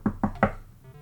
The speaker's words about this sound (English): And there's a knock at the door.